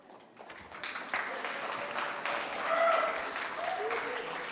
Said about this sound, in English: People will really applaud at anything. Man, that is pathetic.